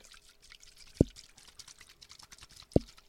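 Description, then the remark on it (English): A nearly empty water bottle shaken: two sharp, hollow clunks about two seconds apart, with faint liquid rattling and a quiet background between them, and no voices. “I'm shaking my water bottle next to me.”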